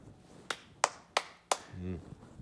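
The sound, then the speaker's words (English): Four sharp hand claps made overhead in an even, steady rhythm, crisp, followed by a brief voiced sound from someone. “Yeah, so that's a good clap when it's over the head?”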